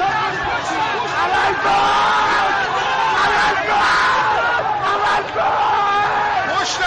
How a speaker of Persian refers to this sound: اینجا محل درگیری میان معترضان و نیروهای ضد شورش است. چند نفر در میان جمعیت به سمت پل اشاره می‌کنند و ناگهان جمعیت هراسان و فریاد زنان به طرف پل می‌دوند. یک نفر از بالای پل به پایین پرتاب شده است.